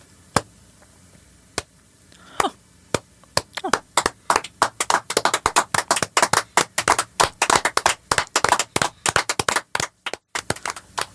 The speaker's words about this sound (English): Oh, thank you. Well, thank you. Thank you. What a welcome. Why are we clapping? I'm not sure.